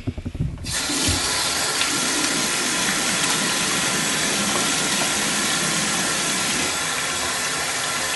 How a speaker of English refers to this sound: Anyways, I'm going to wash my hands now. Be right back.